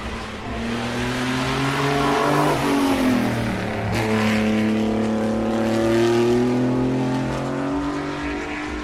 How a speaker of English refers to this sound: That was the Maserati 250F, Fangio's car.